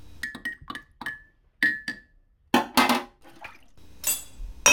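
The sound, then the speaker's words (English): Several sharp ceramic clinks ring out, followed by bursts of coffee pouring into a cup and a final gush of splashing. No one speaks. “heck with it, I'll have a coffee.”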